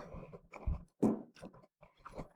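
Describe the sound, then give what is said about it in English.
Chewing with wet, crunchy bites in an irregular rhythm, several quick mouthfuls over a couple of seconds, moderately loud and with no talking. “And as I chew my food thoroughly, that's not 10%, is it?”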